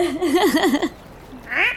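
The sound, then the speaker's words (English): A human voice mimics a land bird call, a quick warbling trill of rising and falling notes, then a short pause and one final upward-sliding whistle-like note, fairly loud. “No, that's not a seabird noise. That's a land bird noise.”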